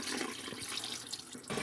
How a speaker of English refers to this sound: And I've got it a little over halfway full of chicken pieces. So now I just need to add my water.